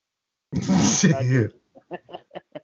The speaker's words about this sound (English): You know, I'm still clearing my throat. Go ahead. What? You're clearing your throat? You got a hairball, buddy? I do.